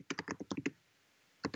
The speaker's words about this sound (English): So I can't hear you typing there. Oh, you can. I was just writing to my wife about trying to keep the cats out of here.